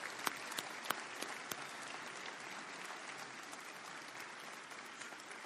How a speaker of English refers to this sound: Over 100 people were involved in all the different ensembles and groups that we have, and a lot of work went into that. So let's give them a good round of applause.